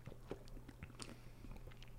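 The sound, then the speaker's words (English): A sip of a beer made with local honey, with a short slurp and a few small wet mouth clicks and swallowing noises over a steady low hum; no one speaks. “Yeah, so first sip here.”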